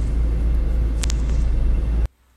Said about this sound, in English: Those were some prime Metro North / Long Island Railroad sounds, and I miss them.